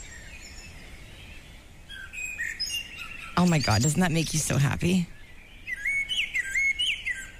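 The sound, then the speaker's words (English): Birds sing outdoors on a spring morning, recorded that morning just outside a front door, a bright mix of high chirps, trills and warbling phrases that carries on steadily, briefly sharing the scene with a person speaking excitedly midway. “At this time of year, I recorded this morning. This is what I hear when I step outside my door.”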